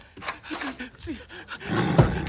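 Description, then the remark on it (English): A tiger growls and snarls in a bathroom in a series of short guttural bursts, building into a loud, rumbling roar at the end. “There's a tiger in there.”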